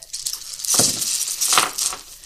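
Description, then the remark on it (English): Dice clatter and rattle across a hard tabletop, a burst of quick, bright clicks that tumble and settle over about two seconds, with no talking. “I got a dice. I brought my dice now as opposed to later.”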